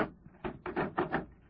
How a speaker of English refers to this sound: Open the door.